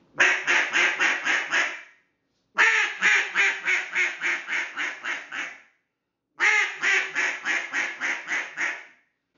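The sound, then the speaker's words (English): A cut-down duck call mimics a barking hen at ducks while duck hunting, in three loud bursts, each a rapid string of six to eight sharp, raspy quacks separated by brief pauses, with no talking. “But really, my ideal way of hunting with two guys or three guys is let that cut down or the one guy who too really likes to bark at those ducks, let that guy work and let him kind of get that.”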